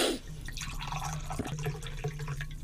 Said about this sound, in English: Oh, yeah, give me the taller pour. I'm happy with that.